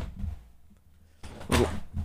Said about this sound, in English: Just heard everything fall behind you.